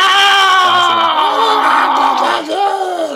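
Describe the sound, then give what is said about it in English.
A voice imitates a harsh, distorted creature screech, a strained bleating wail held for about three seconds with wavering pitch, loud. “The sound coming out of them. The screaming, the screeching.”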